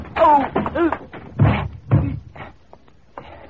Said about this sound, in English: I get up. I hear the door slam. Hand locked. I know that by the time I find another exit, the guy will be gone.